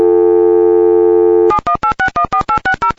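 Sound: telephone busy signal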